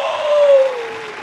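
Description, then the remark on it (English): A short burst of canned applause from a soundboard, a dense, steady wash of clapping and crowd noise lasting just over a second, fairly loud and fading slightly at the end. “Got a soundboard with applause on that motherfucker.”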